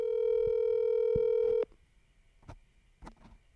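A steady electronic phone ringing tone from a call to Texas sounds loudly for about a second and a half, then cuts off abruptly, leaving a few faint clicks and soft handling noises on the line.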